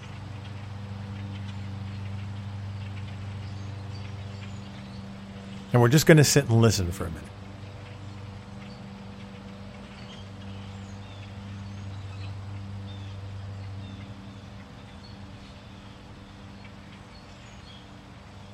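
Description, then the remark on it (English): Suburban neighborhood ambience: a steady low mechanical hum with a soft background wash, broken once by a short loud squawky burst like a bird calling. A voice speaks briefly at the start. “step into suburbia for a minute. Now this is going to sound very much like a lot of neighborhoods that I lived in”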